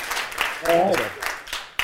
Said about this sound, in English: Two claps.